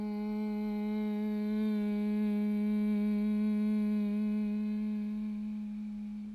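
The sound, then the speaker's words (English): A long, steady, low-pitched hum made on the exhale during humming bee breath practice, held for several seconds on a single breath, fairly loud, fading slightly as the air runs out. “Make that humming noise on the exhale.”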